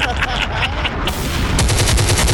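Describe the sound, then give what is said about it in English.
A loud, dense barrage of explosive blasts, bomb-like bursts piling up in quick succession and growing heavier toward the end, harsh with no voices. “Pop it. Bombs.”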